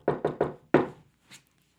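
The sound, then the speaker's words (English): A microphone is banged on its stand four times, three quick knocks then a heavier fourth, followed by a faint softer tap. Each is a sharp, resonant thump with a brief ringing tail. “So he likes to bang his mic on his little pedestal for emphasis, which is lovely.”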